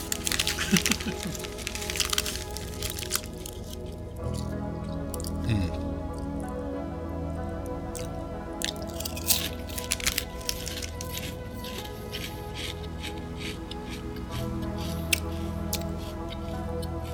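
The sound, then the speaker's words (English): Crisp crunching and cracking as someone chews salty potato chips from a bag, with irregular bursts of crackle over steady mouth sounds and a low background hum. “Gotta love potato chips.”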